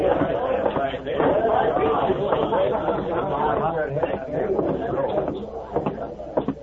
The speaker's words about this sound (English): The two men walked to the back and stood in the shadows, watching the crowd and listening to the jumbled conversations.